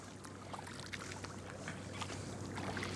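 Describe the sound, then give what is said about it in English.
A steady low diesel drone from the engines of the Golden Bear, a blue and gold ferry boat, hums throughout, with water splashing and rushing over it, continuous, no voices. “You hear diesels.”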